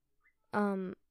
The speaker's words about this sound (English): Anyway, boy, my bird is just over there singing to a mirror. I don't think he realizes what. Okay. Anyway, let's just not care about my bird.